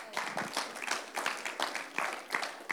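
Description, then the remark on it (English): A crowd of people applauding, steady overlapping claps at moderate volume with a faint murmur of voices mixed in. “And when you do, come on, you can clap that up.”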